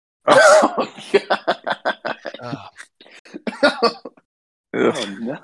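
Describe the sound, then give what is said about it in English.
A loud, harsh forced burp that brings up a large amount of food and turns wet and gagging, followed by a run of choppy sputtering coughs and one more rough burst near the end. “It was one of those like burps that you try to burp, and it comes up with a massive amount of food, and it's like, ow.”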